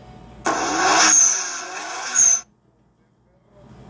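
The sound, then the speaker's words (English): A car engine roars up loudly and takes off with a high screech, lasting about two seconds before cutting off abruptly into near silence. “Let's go into the world of cars. Here we go. And then we take off.”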